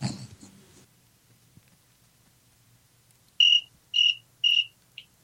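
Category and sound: insect, cricket chirping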